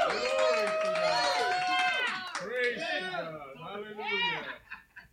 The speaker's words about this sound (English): Anybody here, can anybody here shout? Oh, come on. Come on. God says a loud shout. Come on. I want to see the roof jump. Shout. Oh, come on. Shout.